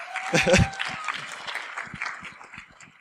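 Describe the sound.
An audience bursts into applause, loudest in the first second, then thins into scattered claps that taper off, with voices mixed in underneath.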